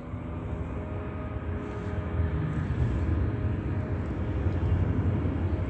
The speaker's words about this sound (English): That's the state creating audible activity using commercial airline planes flying over the B&G Plaza under the fake sun.